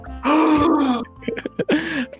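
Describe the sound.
A voice acts out strained groaning and gasping: a long, loud pitched moan, a few short choppy breaths, then another drawn-out groan, close and alone without speech.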